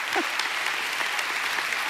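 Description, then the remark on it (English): A crowd applauds steadily, a dense wash of many hands clapping at a constant level, with a brief voice or shout near the start. They clap to thank God after hearing that $1,531,272 was raised in 22 months. “Hey, we ought to be really clapping right now and thanking God for what he's done.”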